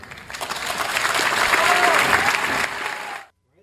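A large Harvard audience, many of them students, applauds steadily, a dense wash of many hands clapping that holds strong for about three seconds before cutting off abruptly into silence.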